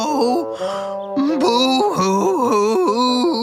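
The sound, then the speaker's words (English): A voice loudly imitates an old woman crying, a story character disguised as an old bunny, a high, quavering wail that rises and falls in pitch with a few short catches for breath, continuing for several seconds without any words. “In a high voice, he cried loudly.”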